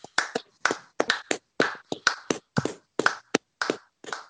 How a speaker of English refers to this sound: Excuse me, sir. I know it's not 8 o'clock anymore, but can we please have a clap for everyone who wrote the dictionary for a bit?